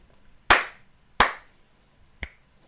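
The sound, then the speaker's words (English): Two sharp, loud hand slaps about a second apart, followed after a pause by a quieter, crisp finger snap, with no talking. “It's two slaps and a snap.”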